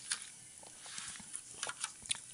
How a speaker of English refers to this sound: I took a sip of, juice, and, now I've completely forgot my train of thought.